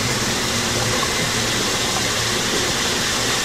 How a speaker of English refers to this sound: Isn't it dangerous for a vampire to be so close to running water? It causes paralysis, doesn't it?